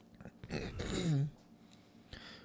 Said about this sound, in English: Sorry, yawning.